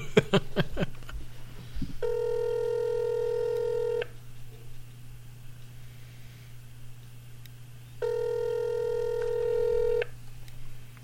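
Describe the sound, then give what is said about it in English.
A phone call rings out on the line: two long, steady ringback tones about six seconds apart, clear and fairly loud over a constant low electrical hum, with nobody picking up. “Phone. He's probably working.”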